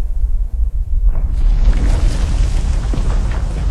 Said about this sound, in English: And there, rising up above the canopy, you see a gigantic bear with a missing eye. This bear looks very odd, off. It begins to thunder closer, and each of its massive footfalls call the ground to shiver.